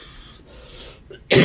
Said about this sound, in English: God, you guys are going to have to forgive me with all this coughing, and I'm so sorry about this.